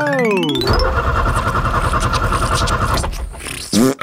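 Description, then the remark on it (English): A truck engine whines up in pitch, chugs loudly and steadily for a couple of seconds, then sputters and cuts out with a few rough bursts and clunks. “I'm about to power up the Chuckle Truck and head out on a brand new adventure.”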